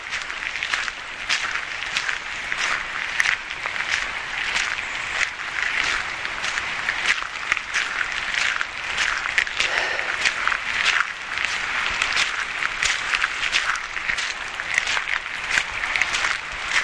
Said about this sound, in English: You can hear, obviously, it is raining today. That's why it's really muddy and mucky.